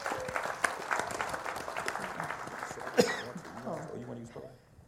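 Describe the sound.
An audience breaks into a dense round of applause welcoming a speaker, many hands clapping steadily, then the clapping thins and fades as voices begin talking near the end.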